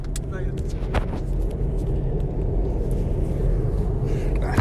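A car brakes hard in traffic, heard from inside the cabin as a steady, loud road and engine rumble with a couple of sharp jolts near the start.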